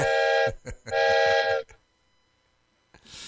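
A train whistle sounds twice in loud, sustained harmonic blasts with a short gap between them, followed by quiet and the start of another blast at the end.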